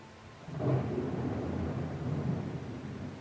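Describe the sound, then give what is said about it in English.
Thunder rolls in with a deep, sustained rumble over a steady hiss of rain on a rainy night, swelling after a brief quiet start and continuing throughout, with no voices. “It's a rainy night.”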